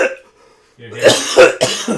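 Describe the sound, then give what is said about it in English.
A person coughs a few times in quick succession, harsh bursts of breath after a brief quiet pause, with a bit of vocal noise mixed in. “People have started talking about having a cough meter for the show.”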